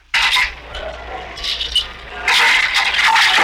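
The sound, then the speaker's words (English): A heavy jail door grinds and rattles along with a harsh metallic scrape, then slams shut with a loud, sustained clanging crash. No one speaks. “The sound of a jail door closing.”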